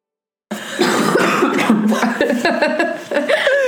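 Two people cough at once, a loud, close burst of overlapping, rasping coughs that runs for about three seconds after a moment of silence.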